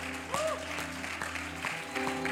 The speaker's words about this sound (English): Come on, give them a hand clap of praise.